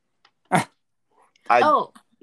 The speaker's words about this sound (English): He's the dog in the room with his toy, and that's what the squeaking is.